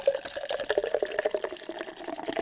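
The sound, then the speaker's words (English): A nitro drink poured hard from a chilled can, a steady stream of gushing, fizzing liquid with busy bubbling crackle throughout, no voices. “Chill can. Done. Pour hard.”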